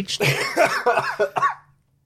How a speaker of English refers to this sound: I'm dying. He can't laugh today. It's just coughs.